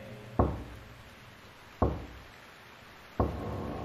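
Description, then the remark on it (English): Three solid knocks on a wooden gate door with a small sliding visor, evenly spaced about a second and a half apart, each a sharp dull thud that fades quickly against a quiet background. “You hear the three knocks again.”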